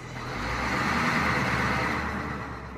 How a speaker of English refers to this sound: Eventually two lorries came and off we went.